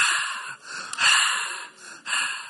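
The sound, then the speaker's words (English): Heavy, excited gasping breaths, loud, in several quick breathy bursts with brief pauses between them, likely a person imitating rapid breathing. There is no talking. “This year is a year of making God breathe faster.”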